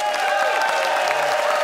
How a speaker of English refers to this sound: It is time to vote, audience, by applause.